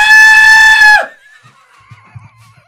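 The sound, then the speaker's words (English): A person imitates an Aztec skull death whistle with a loud, harsh, sustained scream lasting about a second, cutting off sharply into a faint, wavering high whine with a few low murmurs. “Or maybe it is a skull. Yeah, a like an Aztec skull. Death whistle.”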